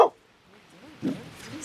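A dog gives a couple of short, gruff barks outdoors, one sharp burst at the start and another about a second later, with quiet moments in between.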